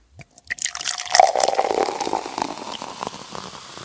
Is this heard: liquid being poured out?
yes